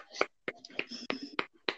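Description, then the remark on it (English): One person claps alone in thanks to the NHS: about six sharp, crisp claps at a steady, moderately quick pace, with a faint murmuring voice in the gaps between them. “Obviously, so everyone, please clap.”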